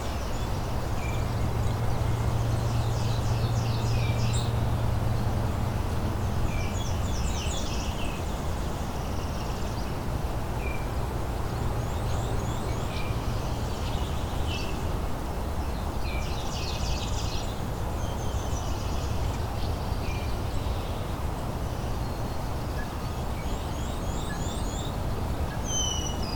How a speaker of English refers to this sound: Blackburnian warbler again.